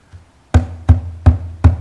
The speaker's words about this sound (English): Keep knocking, man.